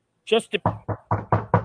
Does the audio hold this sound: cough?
no